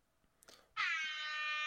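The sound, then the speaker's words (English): After a moment of faint rustling, a loud, harsh alarm buzzer sound effect, the 'pull alarm', kicks in abruptly and holds a steady, raspy tone until the end, with no voices. “That's the pull alarm.”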